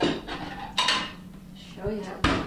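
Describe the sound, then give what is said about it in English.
Dishes and cutlery clatter in the breakfast dining room of the Caribou Lodge Bed and Breakfast in Halifax, Nova Scotia, in the morning, with a few sharp clinks and bumps of plates over a low background murmur of voices. “It's morning at the Caribou Lodge Bed and Breakfast in Halifax, Nova Scotia. The sun peers in through the huge glass windows of the dining room.”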